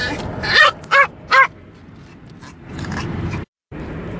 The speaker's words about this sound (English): The sound of my dog you heard in the background is the best in the world.